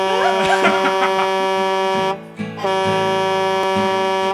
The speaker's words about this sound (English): The horn on my pickup goes. All around this country town.